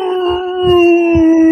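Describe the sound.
A voice imitates the terrible, inhuman scream of a creature struck by a bolt of divine energy: one loud, sustained, howling wail held at a steady, slightly falling pitch for over a second, with no words spoken.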